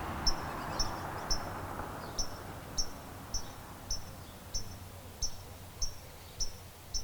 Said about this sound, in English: I'm here with this bird up here. He's going crazy because my cat is over there and the bird is not happy about that cat.